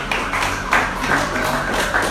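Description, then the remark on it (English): Audience applause as an audience gives itself a round of applause: a dense, steady wash of many hands clapping at once, holding at a fairly even loudness for about two seconds, with no voices over it. “So I want every one of us to give ourselves a round of applause also.”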